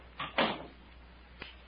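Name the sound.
door closing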